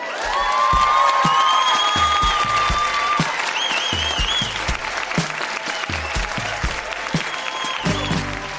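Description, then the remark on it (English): A crowd applauds the readers at a Grown-Ups Read Things They Wrote as Kids event in Winnipeg with dense, continuous clapping, joined by a few whoops and cheers, especially early on, before the clapping carries on at a slightly lower level. “Huge round of applause for all of the readers.”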